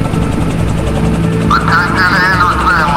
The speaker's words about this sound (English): Hate to break this up, but that helicopter is landing right in front of us.